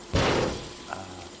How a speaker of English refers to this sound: The door cage has locked itself. I can't get out.